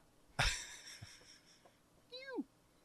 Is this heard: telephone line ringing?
no